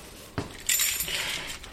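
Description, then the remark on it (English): A bunch of keys jangles at Harvard, near its entomology collection: a sharp clink, then a bright, rattling metallic jingle that keeps going for over a second, with no one talking. “Me and the janitors have lots of keys.”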